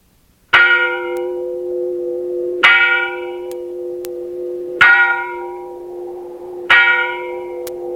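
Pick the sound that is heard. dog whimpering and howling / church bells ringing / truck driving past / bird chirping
church bells ringing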